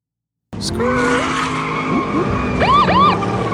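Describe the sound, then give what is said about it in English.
After a brief silence, tires shriek in a long sustained squeal over revving engine noise, ending with two quick rising-and-falling chirps of rubber as two vehicles peel out loudly in front of an SUV to block it in. “The siren sounded as two vehicles peeled out and in front of Shinto's SUV to block them in right on time.”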